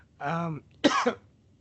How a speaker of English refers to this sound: I'm sorry. I'm in the middle of a cough. So take over.